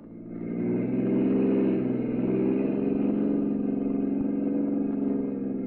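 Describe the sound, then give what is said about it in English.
A car engine hums, rising briefly as it revs and then holding a steady, rumbling drone for several seconds as the car pulls away. No one speaks. “When we got outside, Jordan took out the gun he'd been carrying and made me get into his car.”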